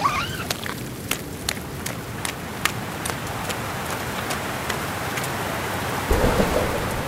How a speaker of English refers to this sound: It's raining. I mean, I knew that, but it's really raining. I can barely keep my eyes open.